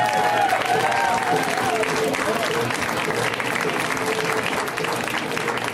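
Steady, loud audience applause fills the whole stretch, a dense wash of clapping with some cheering, sustained at an even level without pause.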